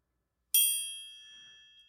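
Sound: bell ding sound effect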